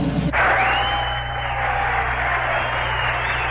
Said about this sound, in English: You'd think the cheering might have been a little more restrained.